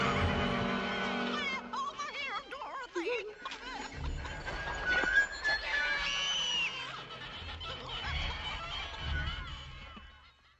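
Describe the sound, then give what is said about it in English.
Several people make high, wavering squeaks with their voices, imitating the squeaky wheels of the Wheelers from an Oz movie. The squeals bend up and down in pitch, overlapping continuously and loudly for about ten seconds with low rumbling underneath. “Yeah, for all the podcast people, all they're hearing is just squeaky wheels. That's it. But guys squeaking.”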